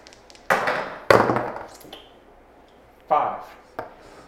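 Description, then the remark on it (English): Two six-sided dice are rolled against each other in a duel, where the highest roll wins. They clatter and tumble across a hard surface in a few sharp bursts of rattling clicks, with quieter knocks in between and a final tap as they settle. “Double D6 duel. Whoever rolls highest wins in this scenario.”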